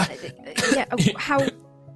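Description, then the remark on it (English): A voice imitates a character coughing and spluttering next to a pillar: three or four rough, raspy bursts in quick succession, fairly loud, then fading to quiet. “You see Mal kind of like coughing and spluttering next to a pillar.”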